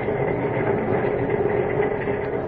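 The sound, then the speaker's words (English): A train rolls along the rails with a steady, continuous rumble and a faint droning hum, holding an even loudness throughout with no voices, heard from a drawing room aboard the train. “Lois is alone in a drawing room on the train”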